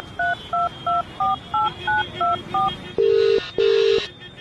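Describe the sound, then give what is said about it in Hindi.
A quick run of eight crisp keypad dialing tones as a number from a house-for-rent notice is called on a phone, followed by two longer buzzing ring tones on the line, clear with no talking. “Mini ने उस number को अपने फोन से कॉल किया।”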